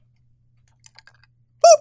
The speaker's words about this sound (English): I'm not promising that's the last you'll hear of the rubber chicken tonight.